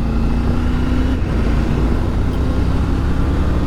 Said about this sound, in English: Sorry, distracted by a car.